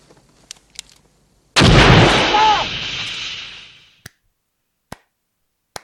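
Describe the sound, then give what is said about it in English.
A massive explosion bursts out loud, roaring and rumbling for a couple of seconds before fading, with a few sharp, isolated gunshot cracks before and after it. “and they eventually, they blow up in a huge explosion.”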